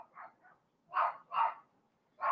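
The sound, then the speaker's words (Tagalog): A dog barks several times in an uneven rhythm, two softer yips first, then three louder, sharper barks with brief pauses between them. No one speaks. “Narinig niyo ba yung aso namin?”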